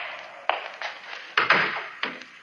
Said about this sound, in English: You mind closing the door?